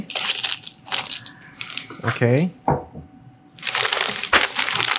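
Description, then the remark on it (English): Loud, crisp crunching of dry cereal in a bowl, in two dense rattling bursts at the start and end, with a voice briefly speaking in the quieter middle. “If liquid comes after this, I would say it's cereal.”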